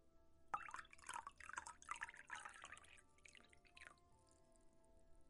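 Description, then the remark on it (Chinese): Liquor glugs into a glass for another drink in a quick run of bubbly splashes for a few seconds, then trails off into a couple of small drips. No one speaks. “好，那我就再喝一杯。”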